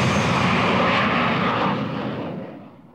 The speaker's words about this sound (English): and 100 times greater still, 25 metres away from a jet aircraft taking off.